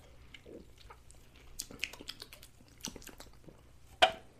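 Sipping a pomegranate-flavored drink: a series of small wet mouth clicks and slurps, ending in one sharper, louder smack, over a faint steady hum with no talking.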